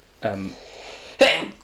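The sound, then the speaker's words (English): A loud sneeze: a voiced, breathy wind-up followed by a sudden sharp, hissing burst of air, with no talking around it. “Bless you. Bless you. Bless you.”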